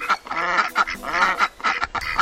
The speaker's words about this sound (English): These Cornish ducks communicate in long, relaxed quacks. De Rijke attributes this to the slow pace of country living.